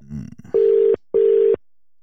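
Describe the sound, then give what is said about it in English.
A brief low rumble, then two steady, identical mid-pitched telephone tones, each lasting a little under half a second with a short pause between them, fairly loud and with no talking, as a phone call is placed to a butcher. “I'm going to call a butcher that someone has sent in and said that this particular butcher is very aggressive.”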